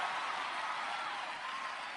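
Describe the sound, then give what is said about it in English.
An audience claps their hands to thank God in a dense, steady burst of applause that holds an even loudness for the full two seconds, with no voices coming through. “Clap your hands and thank God He's the manufacturer.”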